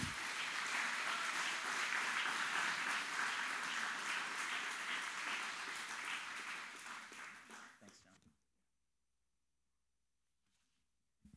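A crowd applauds steadily after a prayer, with dense, loud clapping for about eight seconds, then the applause fades quickly into near silence.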